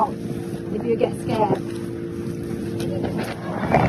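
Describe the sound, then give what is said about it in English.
A motorboat engine drones steadily throughout on a fishing trip near Tanjinan Beach, a constant low hum with wind buffeting the microphone and brief bits of faint voice mixed in. “Stop the boat if you get scared.”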